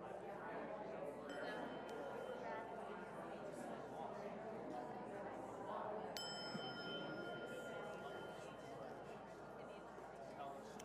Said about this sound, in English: So when we ring the bell, it means we quiet down.